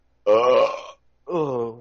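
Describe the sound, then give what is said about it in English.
Two loud burps in quick succession, the first longer and rougher, the second slightly shorter with a falling pitch, with no talking over them. “Yay, one that wasn't a hiccup first.”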